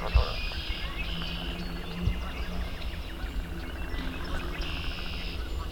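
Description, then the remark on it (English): Red-winged blackbird song rings out over a busy spring chorus in a cattail marsh later in the morning, after rain has stopped, mixed into a steady wash of leopard frogs, chorus frogs and insects, with no one talking. “Red-winged blackbird.”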